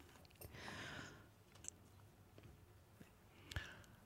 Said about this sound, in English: I've shuffled and cut the cards. I'm going to let you draw a card.